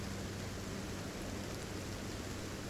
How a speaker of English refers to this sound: The rain lashed and lashed and lashed with whipping wind.